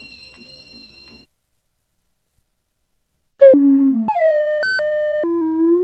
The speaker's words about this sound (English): And that's the slide whistle.